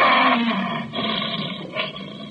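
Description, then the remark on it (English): A lion roars loudly, one long rough bellow that swells again near the end, with no voices; it is the captive lion of Sayyid Khalif at his palace in Zanzibar on a hot moonlit night. “That white building, patched and rotted, was the palace where Sayyid Khalif lived with his fat wives and his captive lion.”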